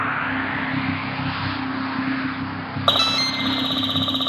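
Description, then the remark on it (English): A steady electronic rumble and hum runs throughout, then near the end a bright, multi-toned synthetic signal sounds suddenly and holds: an X-boat's signal that it has finished sending its message. “X-boat sending complete message.”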